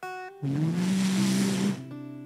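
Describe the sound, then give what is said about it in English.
A car rolls in and brakes hard, its tires letting out a loud, sustained screech for over a second before settling back to a low engine hum. “And it comes and it slams on its brakes right where I'm at. And I hear the tires go”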